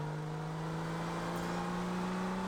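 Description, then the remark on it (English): A car engine hums steadily with a low, droning tone that creeps slightly upward in pitch, as though the vehicle is revving. No voices are heard. “Do you guys hear something? What's that?”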